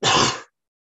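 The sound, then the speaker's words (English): A single sharp sneeze, a loud, breathy burst lasting under half a second that cuts off abruptly into silence. “Bless you.”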